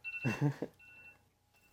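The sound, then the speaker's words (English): A quiet notification beep from a phone interrupting a conversation: a brief burst of two or three rounded electronic tones, with a thin, steady high-pitched tone lingering faintly underneath for most of the moment. “Somebody's trying to interrupt our conversation. That might be my phone. It's your phone.”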